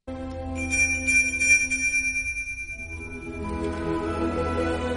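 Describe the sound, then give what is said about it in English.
A small sleigh bell from the ending of the film The Polar Express rings with a clear, shimmering tone that lingers and slowly fades, backed by soft sustained music swelling underneath. No one speaks. “The ending when the little boy still heard the bell ring, which meant he believed.”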